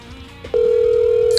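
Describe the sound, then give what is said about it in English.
A phone line ringing on an outgoing call placed on the Ollie's Bar and Grill soundstage phone system to a caller in Arkansas: a loud, steady ringback tone starts after a brief quiet moment and holds unbroken to the end. “It's ringing.”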